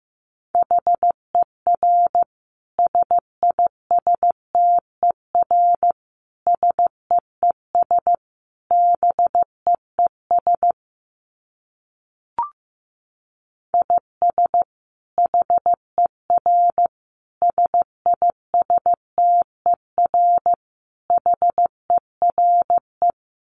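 Morse code sent at about 15 words per minute: a steady mid-pitched tone keyed into quick dits and longer dahs, grouped into characters, with a brief pause and a single click midway.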